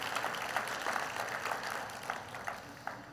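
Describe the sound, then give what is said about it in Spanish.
A church audience claps together for the Lord for His word after a sermon reading, a steady, dense patter of many hands, sustained evenly for a few seconds at moderate loudness with no voices standing out. “¿Cuántos pueden darle un aplauso al Señor por su palabra?”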